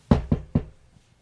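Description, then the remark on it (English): Three quick, firm knocks on a door in an even rhythm, fairly loud, followed by a short quiet stretch with no voices. “They'd be like knocking on the door.”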